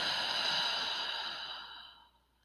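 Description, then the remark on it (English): A long, breathy exhale through the mouth, clearly audible, a soft rushing whoosh that gradually fades over about two seconds, with no talking. “Exhaling completely out of the mouth.”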